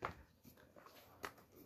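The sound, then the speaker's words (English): A dog shifts around while being petted, with a short high whimper at the start and a couple of soft rustling bursts, all fairly quiet. “You're petting a dog, shut Baltic up.”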